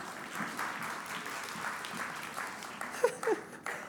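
An audience applauds steadily, a dense wash of many hands clapping at a moderate level, with a couple of brief sharper accents near the end.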